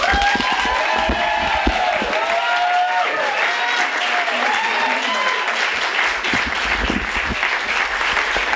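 A large audience claps steadily and loudly throughout, a dense, unbroken wash of applause with a few cheers and whoops rising above it.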